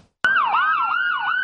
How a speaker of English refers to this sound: The sirens wail and ambulances in Southern California hurry up and wait.